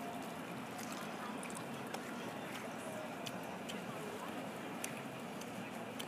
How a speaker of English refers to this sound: Let's listen to us eating our first wing.